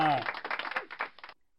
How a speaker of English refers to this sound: Round of applause for Ichi Dono.